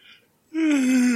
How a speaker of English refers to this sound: Goodness, I'm yawning. I'm yawning.